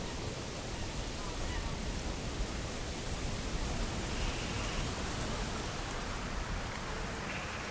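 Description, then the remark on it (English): A steady, broad rush of wind picking up as the day passes, filling the whole scene with a dense roaring hiss that holds at an even level throughout, with no voices. “as the day passes, the wind begins to pick up.”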